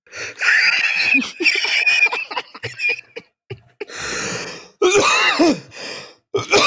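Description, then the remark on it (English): A person coughs hard and repeatedly, with strained wheezing and throat-clearing rasps between bursts, building into a loud, harsh coughing fit with gasping inhales. “Yeah, I didn't realize I was going to be coughing that hard.”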